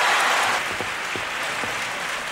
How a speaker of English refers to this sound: Thank you. Thank you very much, members of the Academy, and thank all of you who applauded.